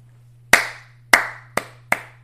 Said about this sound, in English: Yeah, that I feel like that deserved just a little bit of a clap because that was insane.